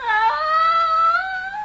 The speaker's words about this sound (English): And it looked into my eyes and mewed like a lost kitten.